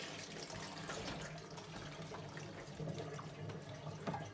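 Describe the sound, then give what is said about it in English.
Water from a jug of about 5 liters pours steadily over salted eggplant in a strainer in a sink to rinse off the salt. It makes a continuous splashing rush with small spattering bursts, running unbroken throughout with no voices. “And let quite a bit of water run over these. You want to get rid of all that salt.”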